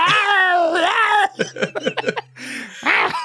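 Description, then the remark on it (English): A person imitates a distressed cat: a long, wavering yowl, then a quick run of choppy, stuttering mewls and a final strained cry, loud, with no other talking. “…'s in some sort of distressed kitten heat where he's both deeply upset and unapologetically Randy.”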